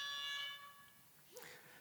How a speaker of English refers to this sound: I got to figure out how to shut that alarm off.